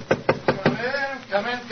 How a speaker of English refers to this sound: Let's tap on his study door.